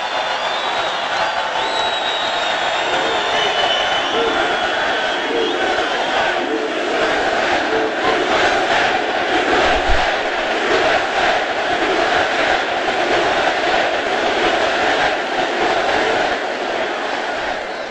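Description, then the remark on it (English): A large crowd cheers and roars continuously, a dense wall of voices holding steady and loud for the whole stretch, with scattered shouts and whoops rising above the din. “I thought you had it won, and then I heard this cheer.”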